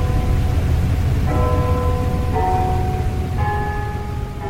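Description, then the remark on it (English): Carillon bells in Claremont ring out three successive notes, each tone hanging and overlapping the next, heard over a steady wash of rain-like background noise. “The Carillion Bells are no longer heard by large crowds of visitors, but they are still heard by the community of Claremont”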